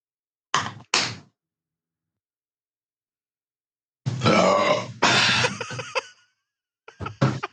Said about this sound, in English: Are you picking up the burps? Are we picking up does a bear shit in the woods? Can we clip that one? Are you picking up the burps? Oh my God. You only heard sounded like a prehistoric dinosaur.